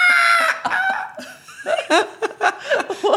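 chickens clucking

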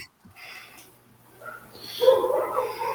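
dog barking

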